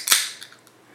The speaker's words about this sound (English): I'm going to open me up a nice little water here.